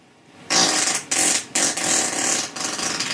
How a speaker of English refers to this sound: And notice there's no break in the fart right there. It sounds like it was about to end, but it continued. Right now we're at 20 seconds. It's a long fart.